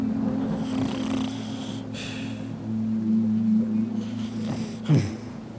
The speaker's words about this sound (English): She looks to Rudy, who snorts and snores.